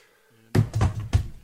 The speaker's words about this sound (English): I figured he just dropped the mic thinking he was done. No, that was my keyboard clunking on the desk.